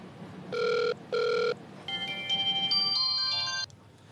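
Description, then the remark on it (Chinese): Two short, steady electronic ring bursts of an outgoing call's ringback tone, followed by a brief beeping electronic melody, with no talking; the call is made to a seller to ask about buying disinfectant spray. “呢间啲消毒喷雾平过出面喎，打电话去问下先。”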